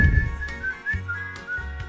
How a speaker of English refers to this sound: Was that a better whistle this time? A little bit, yes. I don't know what it was. Didn't have it in me there for a minute.